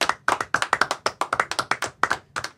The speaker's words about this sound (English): A round of applause, State Chamber of Commerce, huh?